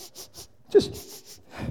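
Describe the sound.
A person mimics a dog sniffing around the corners of a house at a door it cannot get through: quick runs of short, breathy nasal sniffs in two bursts, broken by a brief voiced grunt, then a rougher exhale at the end.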